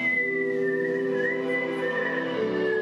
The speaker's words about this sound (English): Weird or not, it is a remarkable talent. She can whistle just about anything she hears from memory.